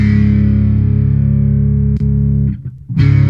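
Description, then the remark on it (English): An electric guitar chord played first without and then with an effects pedal: a distorted chord rings out loud and sustained, breaks off briefly with a few clicks and a short gap, then comes back with the pedal on in a fuller, thicker effected tone. “So this is how I don't use the pedal. And that's how I do use the pedal.”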